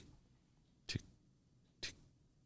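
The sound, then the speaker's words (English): Two crisp clicks spaced about a second apart, a voice imitating the tick-tock of a clock, otherwise quiet with no talking. “Yeah, that's you making a clock noise.”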